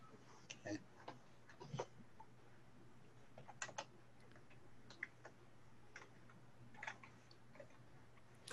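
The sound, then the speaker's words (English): Scattered clusters of soft keyboard clicks, quiet, arriving in short irregular bursts with pauses between them over a faint steady hum, as someone types out a message on a computer keyboard. “I'm typing out something here to Tom real quick.”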